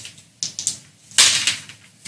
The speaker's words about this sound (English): Yeah, so advantage on the first one. Let's roll two dice.